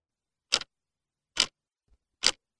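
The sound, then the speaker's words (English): A clock ticks three times at a slow, steady pace, each tick sharp, with silence between and no voices. “The clock begins ticking again.”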